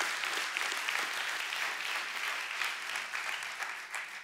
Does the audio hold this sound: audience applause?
yes